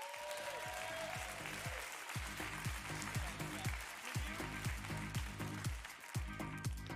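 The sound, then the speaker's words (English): An audience at King's House claps steadily to welcome a speaker, a dense wash of many hands with a low, rhythmic thumping underneath, loud and sustained throughout without any talking. “Hey, would you guys clap and give it up for the one and only Mr. Michael McNutt?”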